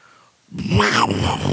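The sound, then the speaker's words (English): A person voices a saber-toothed tiger roar: after a brief moment of quiet, one loud, raspy, growling roar rises and holds for about a second. “Man, if only we had someone to do a saber-toothed tiger roar.”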